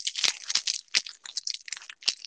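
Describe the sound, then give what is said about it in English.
A chair creaks and rattles in a steady stream of dry, high crackling, broken by four sharp knocks at irregular intervals. No one speaks. “Like, I just really want to maybe sit in another chair that doesn't make noises”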